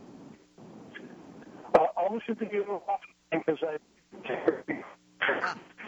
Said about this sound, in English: Your phone keeps going out, sweetie.